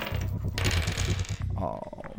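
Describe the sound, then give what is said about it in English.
Dice rolled by two players in a tabletop game, for a fighting brawl roll, clatter and rattle across a hard surface in a quick burst of bright, clicking taps, with a faint voice murmuring underneath. “Okay, both of you roll.”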